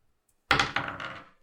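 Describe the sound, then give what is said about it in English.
Dice are rolled onto a wooden table: a sharp clatter followed by a few quicker rattling knocks that settle and fade within a second, with no voices. “Okay, roll again.”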